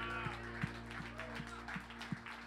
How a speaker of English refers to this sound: We love you, Lord. If you love Jesus, would you give him a hand clap of praise?